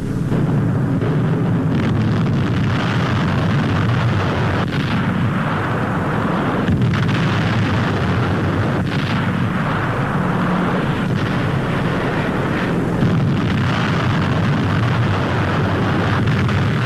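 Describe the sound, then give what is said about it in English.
A continuous, loud barrage of booming explosions and rumbling blasts, dense low-frequency thunder with repeated bursts throughout, as American bombers with British air forces bomb Berlin, Germany, in a daylight raid. “In their first daylight mission over the heart of Hitler's fortress, American bombers combined with British air forces are pounding Germany with raids around the clock.”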